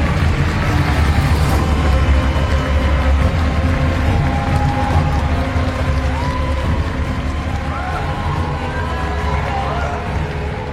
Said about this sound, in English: Everybody, can we please get one more round of applause?